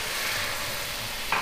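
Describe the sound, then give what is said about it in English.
A steady, hissing sizzle fills the pan of onions, tomato paste and thyme, then a brief louder crackling burst flares up near the end as wine is poured onto the hot surface. No one speaks. “Now it come the best thing, the pour the wine.”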